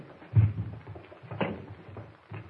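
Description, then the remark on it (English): A chair is pulled up to a table, scraping and thumping across a floor, with a couple of short bumps and a low rumbling drag over a few seconds, no voices. “All right, now, suppose you pull a chair up to the table here.”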